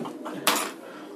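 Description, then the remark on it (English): Dice clatter on a hard surface: a few soft ticks, then one sharp, bright knock that rattles briefly and fades. No one speaks. “Roll for it again.”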